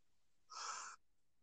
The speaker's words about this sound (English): Sorry, got taken by a yawn there.